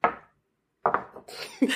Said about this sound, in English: Clink, clink, clink, clink. All right. Everybody's got a glass.